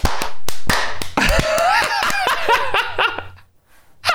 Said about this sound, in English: All right, ready? Let's clap with a count of three. One, two, three.